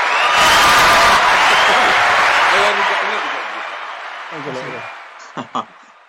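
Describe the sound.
An applause sound effect: a burst of crowd applause with cheering, loud and dense for a few seconds, then thinning out and fading, with a couple of sharp claps near the end and a voice briefly heard.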